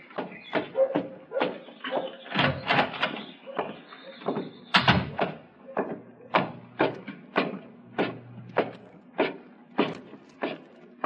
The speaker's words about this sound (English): Come on up, mister. Just open the door and come on up.